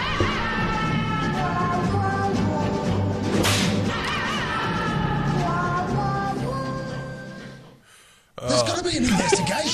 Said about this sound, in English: That whip. All you had to do was hit the whip again.